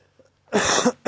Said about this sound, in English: Excuse me. I've got a cough recently.